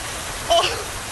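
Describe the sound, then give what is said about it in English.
Steady rain hisses evenly throughout, a dense, fairly soft wash of falling water, with a brief higher-pitched chirp cutting through it near the middle. “It will actually rain. I told you! It's raining!”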